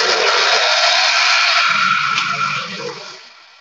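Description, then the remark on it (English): A kettle boiling water for a cup of tea roars toward the boil, a loud, steady rushing hiss with a faint low rumble beneath, easing off and fading during the last second. No one speaks. “Was that a blender? No, it's the kettle. I was making a cup of tea.”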